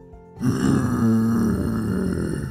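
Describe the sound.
A voice imitates the huge growl of a giant purple hot dog monster: a single loud, low, rumbling snarl that starts abruptly after a brief silence and holds for about two seconds before easing off slightly.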